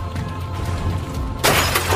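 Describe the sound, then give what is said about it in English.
A low engine-like hum runs steadily, then at about the midpoint the back windshield of a car suddenly shatters in a loud burst of breaking glass, a bright crashing shatter that rings and crackles to the end. No one speaks. “It was the back windshield.”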